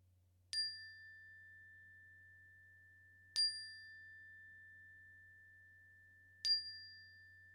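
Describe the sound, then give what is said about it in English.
A meditation bell is struck three times at steady intervals to mark a transition in a meditation practice, each clear metallic tone ringing out and slowly fading before the next, with no voices and only a faint low hum beneath. “And as I ring the bell three times, your choice of adventure, either staying with this practice as long as it serves and supports you, we're transitioning to this new moment at the sound of the bell.”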